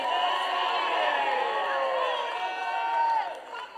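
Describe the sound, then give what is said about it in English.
A large audience at a church service shouts and cheers together in a sustained, loud roar of many overlapping voices, with scattered whoops rising above the din before it begins to fade. “It's taken me two services to get you shouting.”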